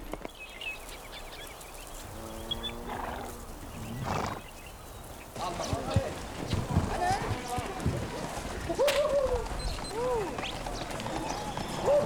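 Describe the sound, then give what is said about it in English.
Horse hooves clip-clop over the ground in Jiaosu County, China, in an uneven, busy patter, with a horse whinnying early on and a steady wash of outdoor activity behind. “The age of the mounted cavalrymen may be long gone, but horses still play a vital role in the local economy.”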